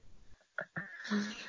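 Someone blows their nose: two short snuffling bursts, then a longer honking, hissy blast that trails off, with no talking.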